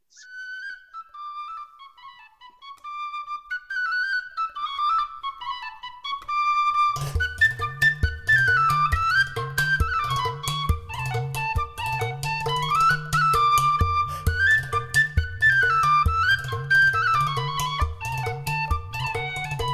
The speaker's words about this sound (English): who's playing a water can, metal water can. It's this sound, kind of traditional gypsy instrument in Hungary.